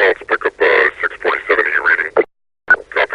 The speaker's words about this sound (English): Again, no one's taken that idea of like intelligible but unintelligible, like mysterious but familiar. It's so good. I would like read a whole oral history just of the Combine radio chatter from this game